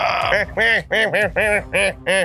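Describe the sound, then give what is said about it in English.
A person imitates a duck with a rapid series of about six nasal, buzzy quacks in a steady rhythm, loud. “The duck is probably quacking.”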